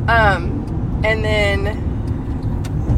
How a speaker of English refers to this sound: And then this white car in front of us is driving very slow.